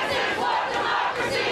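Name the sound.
crowd of protesters shouting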